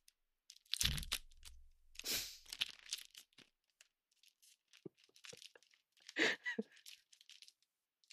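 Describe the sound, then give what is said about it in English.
Crisp crinkling of stiff card packaging being torn open, with a sharp tearing rip near the start, followed by scattered rustles and small crackles as the wrapper is pulled open, no talking. “I'll do some crinkles.”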